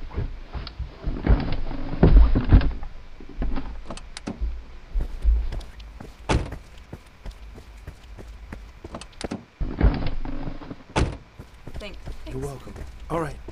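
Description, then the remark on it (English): A door unlatches and swings open with sharp clicks and clunks, followed by scattered mechanical rattles and thumps, while voices talk intermittently. “Here, let me get saying. Your door for you.”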